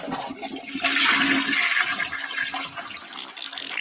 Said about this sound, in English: Because we need to flush this little stinker.